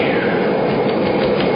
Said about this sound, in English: The surprise stewardess, quickly issuing oxygen masks to the passengers and depressurizing the cabin, unlocks the massive jet door. And as it slides open...